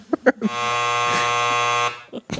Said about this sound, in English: The dryer's done.